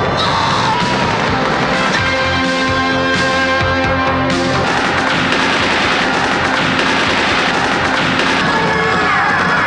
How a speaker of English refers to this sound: Here is coming soon DVD from Troma. That's an explosion. That's an explosion.